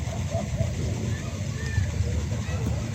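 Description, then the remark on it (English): Steady sloshing and splashing of water as a group of people, including children, wade across a river, a continuous churning wash with faint, indistinct voices mixed in. “They're going across the river now.”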